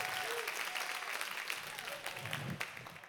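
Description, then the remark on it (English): An audience applauds their pastor steadily for about three seconds, a dense, even patter of many hands clapping at once, with a faint murmur of voices underneath. “So would you give your pastor a round of applause?”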